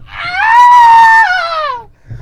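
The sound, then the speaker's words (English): A human voice imitates the human-like scream of frogs heard in the middle of the night, sounding like a woman being stabbed: one loud, shrill wail that rises, holds steady for about a second, then slides downward and fades, with no other talk. “Those frogs are screaming? Screaming, and it sounded like a woman was getting stabbed.”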